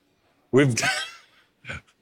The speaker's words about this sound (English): Don't mind me just really yawning.